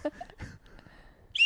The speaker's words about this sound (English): I thought it would be funny to show one slide whistle at the beginning of the set. And then not play it for a while. And then over the course of it was like a 20-minute set, sure. I played five of them.